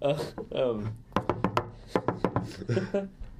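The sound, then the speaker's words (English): A quick, uneven run of about nine sharp taps, fairly loud and crisp, with someone speaking just before and after the tapping. “Don't mind the tapping noise.”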